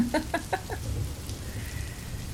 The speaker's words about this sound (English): Now, years later, I'm in the same type of downpour and I'm trying to avoid it like the plague.